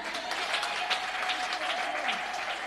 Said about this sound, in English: Clap your hands.